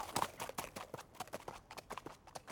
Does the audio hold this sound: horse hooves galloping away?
yes